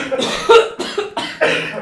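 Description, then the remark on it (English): A loud coughing fit: four harsh, raspy bursts in quick succession over about two seconds, with no talking in between. “We're both having coughing fits.”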